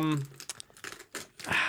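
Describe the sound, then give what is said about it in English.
Crinkling and tearing of gift wrapping paper as a present is opened, in several quick, noisy bursts, ending in a louder rip, with a brief voice sound at the very start. “By the way, I love the texture of this paper.”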